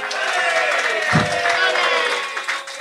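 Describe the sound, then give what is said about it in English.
A live audience cheers and applauds loudly and continuously for a few seconds for a dog named Dottie, a dense wash of clapping and excited voices with a brief low thump partway through. “You have no idea how surreal life can get that people are cheering for this fucking dog.”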